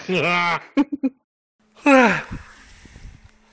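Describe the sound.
A loud, close yawn with a drawn-out voiced groan, a few short vocal bursts, then a second long yawn trailing off into breathy noise.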